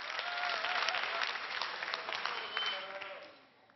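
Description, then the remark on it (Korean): An audience applauds in a dense, steady wash of clapping that holds for several seconds before tapering off at the end, with a faint voice barely audible underneath. “박수 소리 때문에 제 목소리가 잘 안 들렸죠?”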